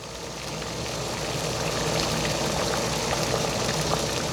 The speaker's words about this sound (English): I love the boiling sound of the hot pot. This sound reminds me of the hot pot restaurant that I used to go to with my parents in Beijing.